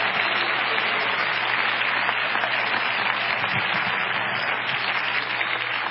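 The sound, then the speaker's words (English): A church audience claps their hands to the Lord steadily, a dense, continuous wash of many hands applauding at an even loudness for several seconds with no voices rising above it. “Clap your hands to the Lord if you believe it.”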